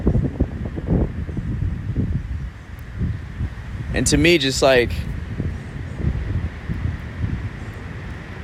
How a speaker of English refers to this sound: Well, right now I'm sitting against a tree next to Lake Michigan in the park. It's quite windy.